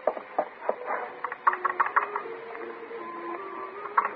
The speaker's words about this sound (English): The thing is stuck. What? The elevator. Stuck again. Door down in the basement keeps swinging open and stops it. Stuck.